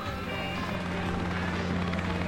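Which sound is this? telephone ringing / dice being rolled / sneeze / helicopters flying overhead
helicopters flying overhead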